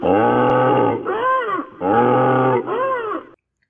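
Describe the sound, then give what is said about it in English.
A Triceratops screams twice as a Tyrannosaurus bites into its spine and lifts it off the ground, loud and harsh, each long bellowing cry rich in overtones and ending in a wavering, rising-and-falling wail, with no voices present. “And the Triceratops screamed.”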